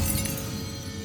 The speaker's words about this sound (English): Startled by the chime of a clock, he drops his glass, which smashes on the hearth.